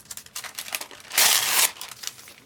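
Dry crinkling of thin tracing paper being handled, with quick crackly rustles at first, a louder sustained crunch in the middle, then lighter scattered crackles as it settles.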